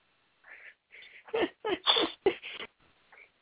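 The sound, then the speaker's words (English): A small girl's little sneeze: a short burst of breathy, sharp sounds, with soft sniffly noises before and after, moderately loud with no talking. “Was that her little sneeze?”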